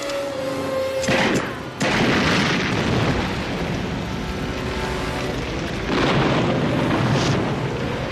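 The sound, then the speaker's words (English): In a film scene, a man fires a gun twice, two sharp gunshots cracking close together, then a car explodes into a heavy, sustained roar of blast and fire noise that swells again near the end. No one speaks. “fucking Dewey pulls out his gun, two shots, blows up the whole fucking car”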